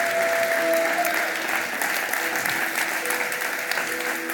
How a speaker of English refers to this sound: Come on, church, let's give them a big round of applause.